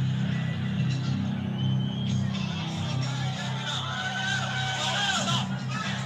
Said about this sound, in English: It's just noise and chains clinking. Obviously, Mike Tyson behind that crowd coming in. It's interesting to note that Mike Tyson selected his pre-fight music just noise. Every once in a while, you hear the clanging of chains.